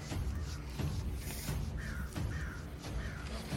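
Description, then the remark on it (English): Two large crows perched at the tip of a spear caw in a series of harsh, repeated calls, three or four in quick succession, set against a steady rushing background noise with no voices. “Two massive crows, the size of your 6 feet tall, size of a standard human, are perched at the tip of the spear.”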